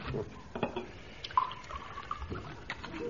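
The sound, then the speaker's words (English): A drink is poured into a glass, a steady trickling splash lasting a few seconds at moderate volume, with no one speaking. “Give me your glass, Mainwaring.”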